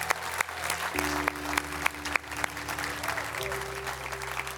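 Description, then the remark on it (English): An audience at Phoenix Hill claps together for two people in Montgomeryville in a dense, steady wave of applause, with a few sharper individual claps popping out and low sustained musical notes humming underneath. “Hey, Phoenix Hill, would you clap with me for the two people in Montgomeryville?”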